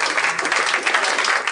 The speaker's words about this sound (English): I think the audience is a little too assertive with their end of the segment applause. I think you've gotten a little too big for your clapping britches.